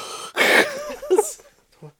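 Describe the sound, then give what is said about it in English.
A loud, raspy wheezing inhale, then a few shorter strained, voiced gasps, as someone deliberately exaggerates heavy, wheezy breathing. “Why are you breathing weird, man?”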